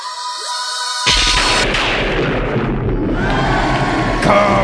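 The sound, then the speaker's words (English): A sharp electric crackle bursts in after a second of high whine, then a dense, loud sizzling and rumbling roar of lightning that sustains to the end with a brief brighter flare. It is the sound of the living lightning that gives Billy Batson the power of Captain Marvel in Justice League issue Zero. “That is your ludicrous speed round, and crackle is the sound of the living lightning that imbues Billy Batson with the power of Captain Marvel, as seen in this week's issue of Justice League Zero.”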